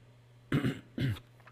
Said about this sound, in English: as I clear my throat because a little coughing spell is coming back